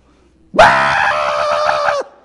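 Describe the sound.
A person imitates a baby goat yelling for its mama with one loud, sustained, strained bleating cry lasting about a second and a half, harsh, with no talking around it.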